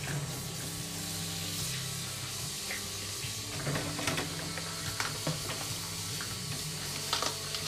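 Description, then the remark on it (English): Steady running water hisses from a tap while dishes, including funnels, are rinsed, with scattered clinks and clatters of utensils and a faint low hum underneath. “I'm just rinsing off some dishes.”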